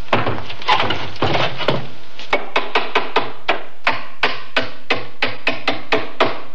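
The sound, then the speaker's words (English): Someone hammers nails into a wooden box lid, a dense flurry of blows at first, then about a dozen sharp, evenly spaced knocks with a woody, slightly hollow ring. “Just as soon as I nail the cover on.”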